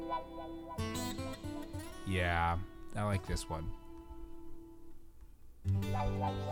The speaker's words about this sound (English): Oof, listen to that 70s reverb. Oh, yeah. Oh, yes! And then that bass comes in.